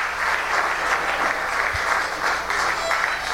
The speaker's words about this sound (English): And the crowd goes wild because the old man is saying, I'm going to go and I'm going to talk to everybody anyway.